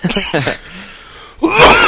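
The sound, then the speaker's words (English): A loud coughing fit: a few quick harsh coughs, a short pause, then a strained, raspy burst of hacking with no talking. “You could have a break right there to cover up that coughing spit.”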